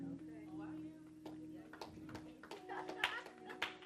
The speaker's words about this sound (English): You can clap.